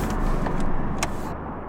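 A car's steady low road rumble, fairly loud, holding level for under two seconds with a few faint high clicks and no voices.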